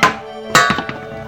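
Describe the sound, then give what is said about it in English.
Metal pots and pans clang as they are accidentally hit: a sharp hit, then after a pause a loud crash followed by several quicker rattling knocks, with a bright metallic ring lingering between them. “I accidentally hit the pots and pans.”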